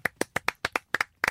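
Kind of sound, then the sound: crowd, hand clapping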